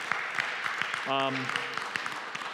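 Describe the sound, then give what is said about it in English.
An audience applauds money raised so far toward a $150,000 goal to remodel a building, a steady wash of dense, overlapping claps. Midway through, a single voice lets out a short, sustained cheer over the clapping. “You can clap about that if you'd like to, because it's pretty cool.”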